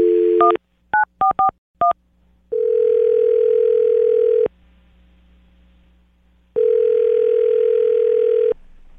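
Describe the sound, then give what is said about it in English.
A quick run of touch-tone dialing beeps as a phone call is placed, then a phone ringing tone on the line, sounding twice in long, steady two-second bursts separated by pauses. Clear, with no talking. “All right, well, I'm going to dial the phone right now, get her on the phone, and get your second date.”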